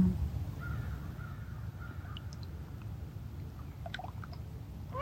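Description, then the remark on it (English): A duck gives a few short, harsh quacks in scattered bursts over a steady low rumble, with no talking. “Is my duck friend.”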